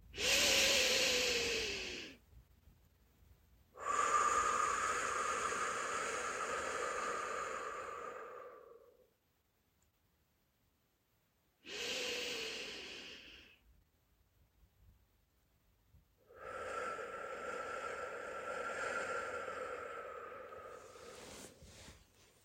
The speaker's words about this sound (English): Take a few deep breaths in through your nose and out through your mouth and let yourself relax and feel calm.